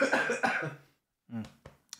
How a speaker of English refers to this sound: Sorry about this. I know it's disgusting, but I'm here at least. Coughing's not bad. At least you're not like clearing your throat and hocking up loogies and stuff.